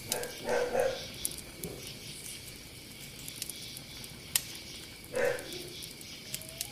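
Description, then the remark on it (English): A dog barks a few times in short bursts from inside a tent, a pair near the start and another several seconds later, over steady background noise with no talking. “There goes, there's a dog barking.”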